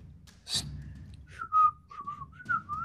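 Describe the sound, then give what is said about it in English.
A person whistles a short series of wavering notes in quick phrases, moderately loud, after a brief breathy rush of air, with no talking. “And I'm going to whistle.”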